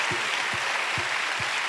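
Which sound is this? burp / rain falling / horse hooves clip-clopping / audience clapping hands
audience clapping hands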